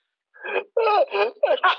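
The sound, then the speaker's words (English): A voice imitates a sneeze in a few quick voiced bursts, building up and then releasing, fairly loud, with no other sounds around it. “Bless you.”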